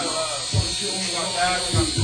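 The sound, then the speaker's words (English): Electric fans, brought over to cool off the audience, run with a steady, unbroken whirring drone that holds at an even level throughout, broken only by two brief low thumps. “Crown Vic ain't kidding with those fans.”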